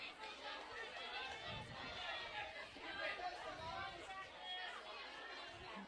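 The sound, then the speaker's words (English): Hornet fans in the background cheering on their team during a game as the pitcher works to a full count, making steady, dense noise, overlapping voices and shouts blending into a continuous roar at an even loudness throughout, with no single voice standing out. “Hornet fans in the background cheering them on.”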